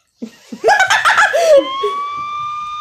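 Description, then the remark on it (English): A burst of laughter, then a steady, high, siren-like wail holds for over a second until the end, apparently someone's voice imitating a police siren, fairly loud. “Do police sirens.”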